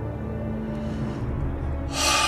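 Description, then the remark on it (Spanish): Labored, anguished breathing of a sick man lying on a wooden cot: a low, rasping exhale that builds into a sharp, gasping breath near the end, with no talking. “con una respiración fatigada y angustiosa, yacía en el catre de madera.”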